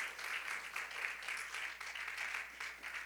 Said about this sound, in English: Everybody say hallelujah. Why don't you clap your hands to the Lord and let's give God some praise. How about it?